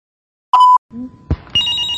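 A brief electronic ring tone over a phone line, followed by faint line hiss, a couple of sharp clicks and a steady higher tone as the call connects.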